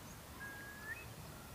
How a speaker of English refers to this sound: there they are, two curlews and a buzzard. This is their alarm call, and they're doing their best to shake off the predator. Behind us, another curlew joins the defence, and we're caught within the surround sound of these remarkable birds.